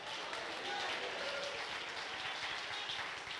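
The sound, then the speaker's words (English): A church audience claps their hands in a dense, steady burst of applause that holds at an even loudness throughout, with faint voices mixed into the crowd noise. “I think you ought to jump to your feet and clap your hands and say, God is good.”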